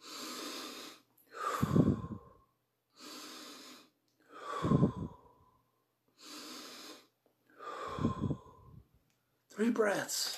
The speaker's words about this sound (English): And it starts out with the BP. And if you turn your sound up, if you listen, it goes like this. That's because I'm breathing.